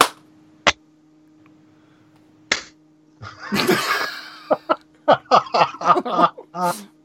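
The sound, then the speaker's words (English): Hands clap together to sync audio: two sharp, separate claps ring out with a pause between them, followed by a messy, uneven flurry of claps that fail to line up, mixed with snickering laughter. “Okay, but we all need to clap at the same time, otherwise it doesn't work.”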